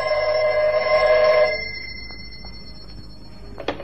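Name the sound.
telephone ringing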